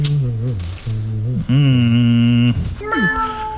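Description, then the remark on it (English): A person's voice imitates a cat as the final impression in an impression game, drawing out several wavering meows in a row, the longest one steady and strained near the middle, fairly loud with no other talk. “I said meow.”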